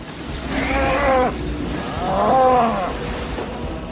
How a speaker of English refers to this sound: We got cows. Another cow. Actually, I think that was the same one.